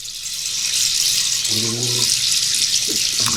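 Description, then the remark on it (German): A steady hiss of tap water runs throughout as teeth are brushed at a boarding school, with a short burst of voice partway through over the flowing stream. “Vorher war allerdings noch Zähneputzen angesagt.”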